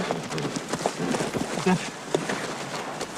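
Horse hooves clip-clop in a loose, uneven rhythm, a handful of hollow knocks standing out over a steady background hiss.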